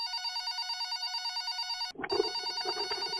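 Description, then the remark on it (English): An electronic telephone ring purrs in a steady, high-pitched pulsing tone for about two seconds as a call is placed to someone at the Lake of the Ozarks, then cuts off abruptly into a burst of rumbling, crackly line noise. “So let's give him a ring and see what he's up to.”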